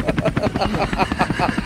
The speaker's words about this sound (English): I'm manufacturing a sketch … live. Just flying over New Farm Park. Oi, you what two. What are you doing? Oh, no, it's the … helicopter.